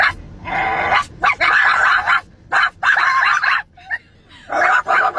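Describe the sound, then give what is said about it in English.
High-pitched voices of two children yap and bark like dogs at each other, trading rapid, overlapping bursts back and forth with brief pauses, loud, with no ordinary speech. “Those are kids barking at each other.”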